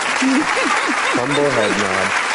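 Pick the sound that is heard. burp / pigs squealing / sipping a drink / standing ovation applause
standing ovation applause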